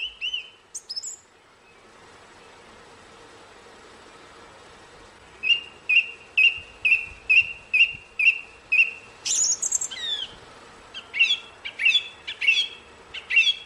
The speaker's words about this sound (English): It's a thrush. It's a thrush. Isn't that beautiful? It is lovely.